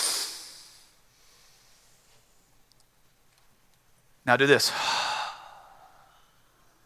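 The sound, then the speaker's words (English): A crowd breathes together in unison: a soft inhale fades at the start, then after a pause a loud, airy collective exhale swells up, with a brief spoken word just before it. “You took a breath in, you let a breath out.”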